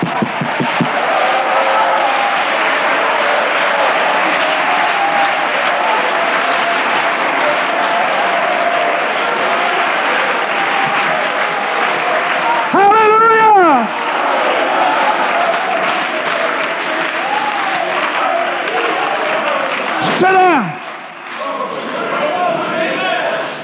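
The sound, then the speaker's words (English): An audience claps hands loudly and steadily, a dense, continuous wash of clapping that runs the whole time, with a couple of brief shouted voices rising above it. “Come on, clap your hands.”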